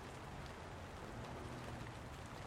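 Light rain patters steadily in a soft, even hiss, slowing down and growing quieter, with a faint low rumble underneath and no voices.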